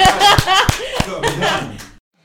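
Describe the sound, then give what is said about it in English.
A short burst of applause from a small group, with sharp claps at a quick steady pace mixed with cheering voices and laughter, ending abruptly after about two seconds. “Round of applause.”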